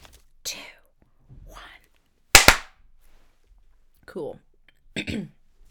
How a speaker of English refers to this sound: Let's clap in 3.